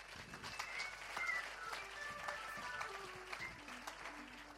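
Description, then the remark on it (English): A church audience claps steadily for several seconds after a sermon, a dense, even wash of applause with a few scattered louder claps, while soft sustained keyboard notes drift downward in the background. “A round of applause.”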